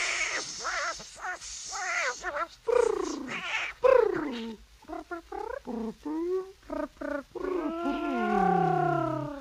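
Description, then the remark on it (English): A cat meows repeatedly, a rapid series of short, pitch-bending cries and yowls that builds into one long, drawn-out wailing meow at the end. “Yes, meow.”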